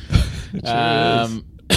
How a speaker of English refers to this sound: There you go. Cough, don't cough. Oh, God. It's happening.